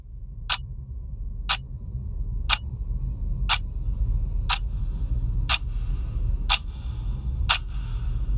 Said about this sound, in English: you get into this room where there is this trapped girl, kidnapped girl, and she has a bomb on her, and there is a clock, and the clock is ticking.